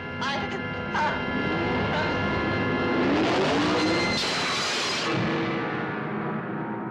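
A car engine runs with a constant loud rumble for several seconds, its pitch climbing in a revving sweep midway before settling back to a steady drone.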